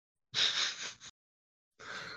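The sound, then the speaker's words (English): A dog breathes right up against the microphone and onto the speaker's face, two loud, airy huffs with a short pause between them, close and noisy with no talking. “Hello, dog. Breathing on my face.”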